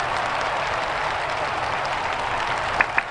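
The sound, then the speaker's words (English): A crowd applauds steadily, a dense, even crackle of many hands clapping at once, with two sharper, louder claps standing out near the end. “Oh, that's people clapping.”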